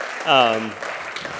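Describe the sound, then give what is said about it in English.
A church audience claps steadily to praise the Lord, in a broad, noisy wash, while one voice lets out a loud, falling whoop of a cheer near the start. “So if we could just clap and praise the Lord for that.”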